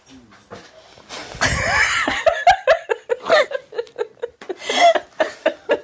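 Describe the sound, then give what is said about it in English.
A dog chewing: a rapid series of short, crunchy gnawing bursts at a steady pace, moderately loud, after a brief rustling scuffle at the start. No one speaks. “Let's see if we can hear him chewing in the background.”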